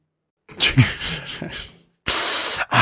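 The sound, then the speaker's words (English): A voice imitates an alien creature's hiss: a raspy, breathy stretch of hissing and throaty gurgles, a short pause, then a loud, steady, sharp hiss and a brief final burst. “That's not the snake. No, that's sound. Last that's Outpost. The Ferengi sound.”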